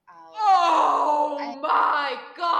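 A person lets out a long, strained scream in two or three sustained bursts, sounding somewhat off-mic and a little distant, with short breaths between the cries.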